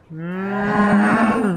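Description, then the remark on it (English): A single long, loud cow moo, steady, rising slightly and holding for over a second with no other sounds, as the cow falls out of the sky. “as a cow falls out of the sky and splatters on the ground.”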